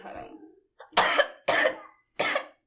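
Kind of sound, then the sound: human body sound, cough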